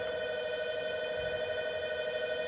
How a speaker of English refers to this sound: See? Doorbell. Told ya.